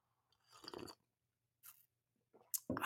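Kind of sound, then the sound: food or drink, sipping coffee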